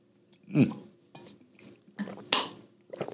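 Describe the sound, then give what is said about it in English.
A few short bursts of handling sounds, with a glass clinking and soft gulping or swallowing as someone drinks water. The sounds come in separate knocks and rustles, with no speech. “I had to get some water real quick.”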